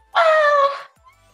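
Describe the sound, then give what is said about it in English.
A single shrill, squeaky sung note from a human voice, loud, held for under a second with a slight downward slide before cutting off into near silence; an extremely high note likened to a dog whistle. “That was me hitting a note that you didn't even know existed. It was a dog whistle.”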